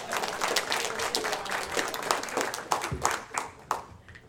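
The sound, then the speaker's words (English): A crowd claps steadily for several seconds to welcome Pastor Mark in the morning as he comes to lead the teaching. It is a dense wash of many hands with sharper individual claps popping out, sustained and fairly loud before tapering slightly at the end. “So let's give Pastor Mark, my pastor, a warm welcome this morning as he leads us in the teaching of his word. That means you have to clap.”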